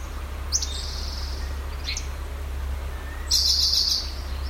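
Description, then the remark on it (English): High, thin bird calls: a short chirp, a fainter one, then a longer buzzy trill, with a whistled human imitation mixed in among them, over a steady low hum. “tell which one is the bird and which one's the birder?”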